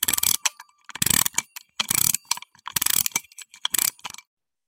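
The clockwork man TikTok being wound up so he can bow: five or six bursts of rapid, crisp ratcheting clicks, each lasting about half a second with short pauses between, fairly loud and with no voices.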